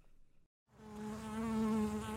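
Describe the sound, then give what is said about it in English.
A steady, droning buzz of bees fades in after a brief silence and grows louder, a dense hum with rich harmonics holding continuous to the end. “Bees mean honey and hives.”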